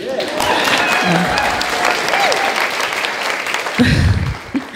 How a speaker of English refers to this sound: Hold for applause.